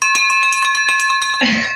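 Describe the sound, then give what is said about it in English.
A victory bell rung rapidly and repeatedly in an office in Memphis, its bright metallic tones ringing on under quick, steady clangs, loud, before a short burst of rustling noise at the end. “Did you get your victory bell in Memphis?”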